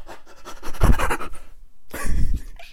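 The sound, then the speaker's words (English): A voice imitates heavy, breathy panting in two rough bursts with a short pause between, fairly loud, simulating someone sprinting toward the listener. “If you're just walking in the dark and then you just hear like fast footsteps and panting and they're like coming close to you”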